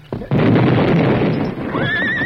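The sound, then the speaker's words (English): A sudden loud, rumbling roar of a fuse-lit blast that brings tons of rock down over a mine shaft entrance, and near the end a horse lets out a high, wavering whinny over the noise, with other horse sounds mixed in. “Better hold the horses. The blast will scare them”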